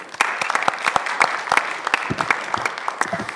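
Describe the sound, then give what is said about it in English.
An audience at a morning talk claps steadily in applause for a new scholar, a dense patter of overlapping hand claps at moderate volume that holds evenly throughout, with no voices over it. “He's our new whole group scholar, so I want to give him a round of applause.”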